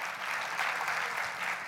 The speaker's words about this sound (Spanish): ¿Quieres aplaudir o no?